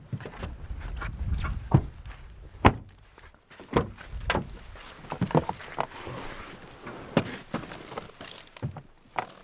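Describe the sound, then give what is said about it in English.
A door is opened and held, with a series of sharp clunks and latch clicks, mixed with shuffling footsteps and a low rumble. No one speaks. “I'll hold the door for the ladies.”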